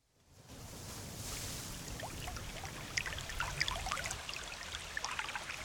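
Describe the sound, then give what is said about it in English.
A steady wash of flowing water from a babbling brook, with bright splashy gurgles and droplets scattered over a continuous low rush; constant, with no voices. “The Babbling Brook whisks Hazel, Lump, and Squish all the way from the Clutterbuck Mines to the Cobbler's Gulch Orphanage for boys and girls.”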